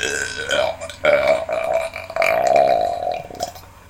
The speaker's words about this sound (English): Here's another one. It's a roadside bird, this one. Oh, cool. So it often hangs around roads. By A roads, B roads. All the roads.